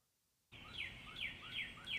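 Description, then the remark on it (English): Birds chirp in quick repeated bursts in a backyard at 4:30 in the morning, recorded on a phone: several bright call notes in a steady rhythm over a hiss of outdoor background noise, starting abruptly after a brief silence. “Hear those birds?”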